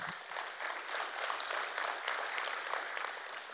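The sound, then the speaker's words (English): Steady applause from an audience welcoming a guest pastor who is about to teach, a dense crackle of many hands clapping at an even volume throughout, with no voices over it. “We'll see if you clap when this is over, okay?”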